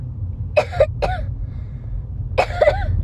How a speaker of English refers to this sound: That sounds like a fake cough. That's not even a real cough. It is real. It sounds like you're just trying to cough. I'm not. Yeah, dude, it kind of sounds, like, forced, like she's not really sick.